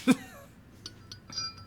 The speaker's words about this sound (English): Wind chimes.